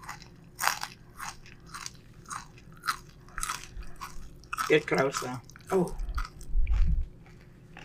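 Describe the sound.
Loud crunching of a nutty cookie, a run of sharp crackly bites and fast chewing, with a few brief spoken words mixed in.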